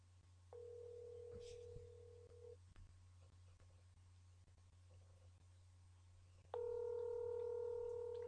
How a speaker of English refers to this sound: It's like 11 o'clock at night, y'all, so. I thought young people be up all night. Why this phone just ringing?